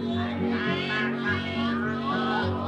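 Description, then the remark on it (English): A voice imitates a goose's honking in a children's song over steady musical accompaniment, a few nasal honks running back to back at a moderate level. “The goose went.”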